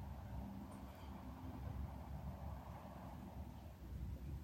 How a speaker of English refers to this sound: It's a quiet morning here on the shores of Kitchigami, the big lake. Quiet after yesterday's powerful, powerful winds. Every once in a while, a gust is coming through.